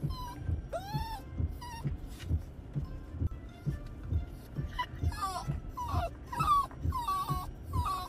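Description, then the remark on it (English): A dog with separation anxiety whimpers and whines over and over in a just-parked car, high pitched and wavering, with short yips mixed in over a steady low rumble in the background. “My dog's separation anxiety is so bad, I just parked the car and he thinks I am going to leave him.”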